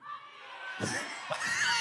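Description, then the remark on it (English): A live audience erupts in overlapping shouts, many voices calling out pizza places to order from at once in a loud, dense clamor with a couple of sharper bursts rising above the crowd noise. “Someone yelled the day I'm going to die? Domino's.”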